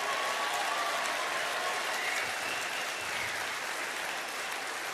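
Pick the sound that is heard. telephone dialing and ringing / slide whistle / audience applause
audience applause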